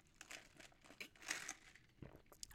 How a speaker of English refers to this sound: Well, I want to take a sip of water for a second.